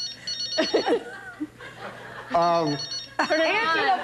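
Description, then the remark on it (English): A cell phone rings with a short burst of bright, tonal electronic ringtone notes, clear, while people laugh and chatter around it. “Dude, you got a phone ringing.”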